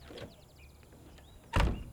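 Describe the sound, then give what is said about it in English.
A door thuds shut with a single heavy knock as people walk out through it, preceded by faint squeaky creaks and rustling of movement. No one speaks. “And she too rises and follows the others out the door.”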